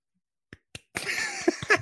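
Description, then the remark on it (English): Two sharp, separate hand claps, then a quick flurry of rapid clapping that builds into a dense patter of applause and fills the rest of the moment. “I'm giving you a round of applause.”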